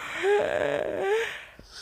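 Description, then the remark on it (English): A single drawn-out yawn, fairly loud, with a breathy voiced tone that rises and then sinks before trailing off, heard on its own without any talking. “You're making me tired just thinking about it. Specifically, placed yawn.”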